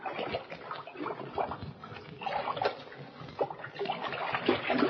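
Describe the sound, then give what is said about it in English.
Cold water splashes and sloshes continuously at the bottom of an old abandoned well about 40 feet deep. Irregular surges of churning and slapping rise and fall at a steady loudness. No voices. “The cold water at the bottom of the deep well has revived them.”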